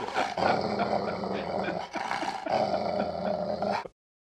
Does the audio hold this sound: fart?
no